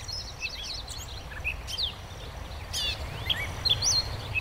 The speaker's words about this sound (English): Now this great catbird's perched about 10 feet off the ground in a bare shrub, but the song we're going to hear now is continuous. Let's just listen to the song for a minute.